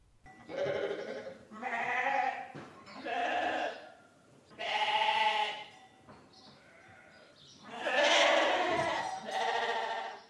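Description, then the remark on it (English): Several sheep bleat one after another, each call a loud, quavering baa lasting about a second, with short pauses between and no talking. “These are sheep.”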